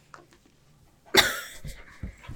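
A dog named Gribble pants loudly in quick, breathy huffs. A sharp burst of breath comes first, then several rougher gasps follow in an uneven rhythm, with no one talking.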